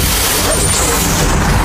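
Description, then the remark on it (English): A Translink Glider bus pulling up, with a loud, steady rumble and a sustained hiss of air brakes filling the short stretch, and faint whining tones above the noise. Nobody speaks. “Aye, that's if this bloody bus shows up. Actually, look, here's the Stormont Trooper Express.”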